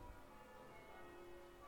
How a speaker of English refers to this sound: As you can hear, the bell ringers have started again further down in the village.